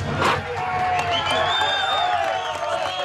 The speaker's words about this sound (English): Euphoric cheers were heard. The nation and the world rejoiced knowing the men were safe.